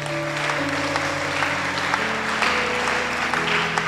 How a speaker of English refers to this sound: Will you continue after the meeting? Thank you. I'll clap for them.